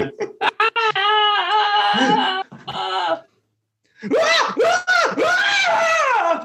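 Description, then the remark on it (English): A person screams loudly on request, likened to a Wilhelm scream: a few sharp yelps, then long wavering screams, a brief silence, and another burst of strained, warbling screaming. “Do some more screaming.”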